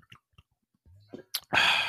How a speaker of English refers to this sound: Hold on, let me take a swig of water.